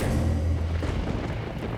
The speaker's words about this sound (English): Violent rain pelted down onto the roof of the Palacio de Linares.